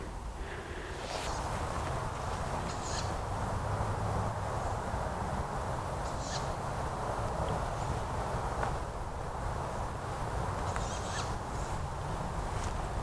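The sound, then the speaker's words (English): A tawny owl in the trees at night gives a few short, high squeaky calls at irregular intervals, faint over steady outdoor background noise with occasional rustling or footsteps. “So no nightingales yet, but I've found, I think this is an owl, probably a tawny owl.”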